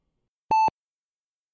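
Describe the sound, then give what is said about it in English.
A heart monitor beeps with a bright, steady electronic tone: one short beep, then another about a second later, loud with silence between and no voices. “It's hard to concentrate with it beeping so loud. It's your heart monitor, son.”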